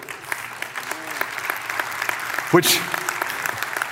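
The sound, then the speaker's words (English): An audience applauds steadily, the dense crackle of many clapping hands running through the whole stretch with no breaks, and a brief voice rising over it partway through. “Which leads, you're like, do I clap to this?”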